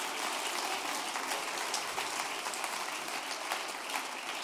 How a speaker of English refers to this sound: Go ahead and give the Lord a hand clap of praise.